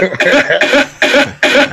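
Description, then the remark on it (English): A loud, harsh cough from a song's intro repeats four times in a quick, even rhythm, with nothing else around it. “No, I like it better just the cough.”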